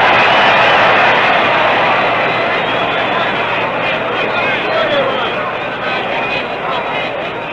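A large baseball stadium crowd in Milwaukee roars loudly and steadily during a World Series game as pitcher Ernie Johnson throws strikes to Mickey Mantle, a dense wall of cheering that stays strong throughout and eases only slightly toward the end.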